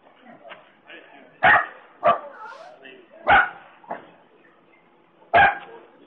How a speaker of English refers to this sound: Shut that damn dog up. The dog's annoying.